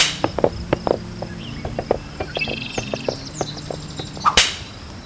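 A black snake whip flicks and cracks repeatedly in short, sharp snaps, wielded by an overseer riding a horse up and down a road, ending with one loud crack near the close, over a steady background of chirping insects and faint birdsong.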